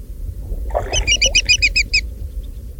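A greater yellowlegs that has just been flushed gives a rapid series of about seven sharp, ringing whistled notes, loud, over a steady low rumble of wind or water.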